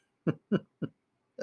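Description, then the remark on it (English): Four short, low throat-clearing grunts and small coughs from a person with a dry, scratchy voice come in quick succession, with a brief pause before the last one. No talking. “And it makes me do this little kind of cough thing or clearing my throat quite often.”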